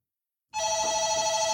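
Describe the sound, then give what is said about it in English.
A front desk telephone starts ringing abruptly after a brief silence, a steady, bright electronic ring, fairly loud, with no voices. “have been talking for about an hour and a half when the front desk phones.”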